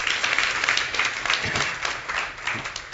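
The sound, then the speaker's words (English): An audience at a church worship service claps steadily for a few seconds, a dense, even wash of many hands with no single rhythm, staying fairly loud throughout and tapering slightly near the end. “You guys crack me up. You clap.”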